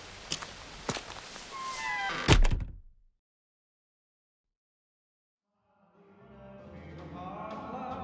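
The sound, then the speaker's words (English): A door is pushed shut with a single heavy thud after a few brief clicks and rustles. Silence follows for a few seconds, then soft music fades in. “Oh, freezing with the door open.”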